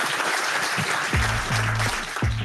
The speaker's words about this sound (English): This has been fantastic. A huge, huge thank you to the panel. Can I just get everyone to give our panel a round of applause?